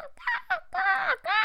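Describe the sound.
A person imitates a scary crow, giving four harsh, nasal caws in quick succession, fairly loud, with no other talking.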